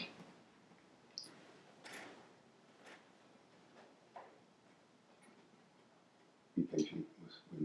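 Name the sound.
computer mouse clicking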